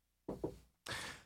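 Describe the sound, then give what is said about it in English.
Two quick, dull knocks on wood in succession, low and hollow, followed by a long breathy exhale that fills the rest of the moment. “And, you know, I just, I need to get over that at some point, you know, 31 years old, I'm gonna knock on wood.”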